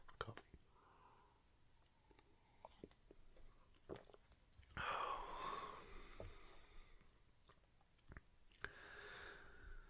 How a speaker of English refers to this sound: I take another sip.